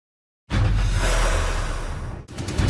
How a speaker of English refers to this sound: We're back in our 2024 lead. You hear the election music.